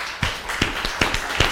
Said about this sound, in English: I want you to know this is polite applause. This is only polite applause I'm giving you right now.